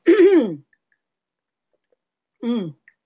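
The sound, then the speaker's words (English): Two short, voiced throat-clearing bursts from a person coughing after burning a lot of sage in the room, one near the start and a briefer one about two seconds later, fairly loud, with silence in between. “But first, let me have a little drinky-poo, because I burnt a whole bunch of sage in this room, and I am coughing up a storm.”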